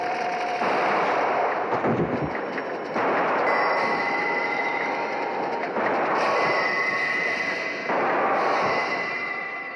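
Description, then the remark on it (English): A subway train rumbles loudly and steadily along the tracks, with rattling clatter and high metallic squeals rising and fading every few seconds. No one speaks. “And then he calmly waits for the train to pull into the next stop and strolls right out.”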